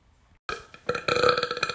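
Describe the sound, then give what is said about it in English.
A loud, drawn-out burp erupts suddenly after a brief quiet moment, growing rougher and more forceful as it rumbles on for over a second, with no talking around it. “I feel like at the end of one of those burps, it's just going to be...”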